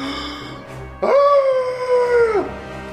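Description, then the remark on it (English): A single loud, drawn-out monster shriek, the Sabo-san's Fell Shriek, a deafening cry in a 30-foot cone, holding a steady, howl-like pitch for over a second before dropping away at the end. It cuts in abruptly over a low background hum. “Sabo-san emits a deafening cry in a 30-foot cone.”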